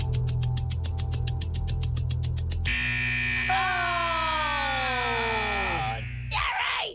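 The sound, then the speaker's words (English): A loud, harsh game show buzzer blares for several seconds as the clock runs out on a contestant's instant-cash round, cutting in after a run of rapid, steady ticking beeps, with a falling electronic tone sliding underneath before it stops. “Well, the buzzer went off.”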